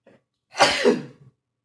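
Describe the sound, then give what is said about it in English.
A single loud sneeze caused by dust on a package: a quick intake followed by a harsh, breathy burst of about three-quarters of a second that trails off, with nothing else around it. “Man, there is dust all over this package. No wonder I'm sneezing.”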